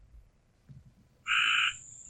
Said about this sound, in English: You need to kill that frog, man. It's too loud. We tried. They're taking over. He's tearing it up.